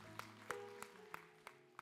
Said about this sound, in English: Give the Lord a big clap.